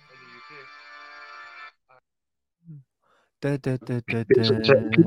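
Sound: mobile phone ringtone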